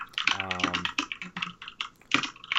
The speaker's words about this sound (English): Oh, by the way, I think I'm hearing somebody type.